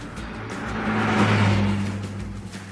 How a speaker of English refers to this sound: motorists to be able to drive by in a flash at 70 miles per hour.